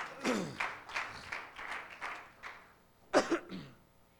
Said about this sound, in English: Give the Lord a hand clap as you're seated this morning.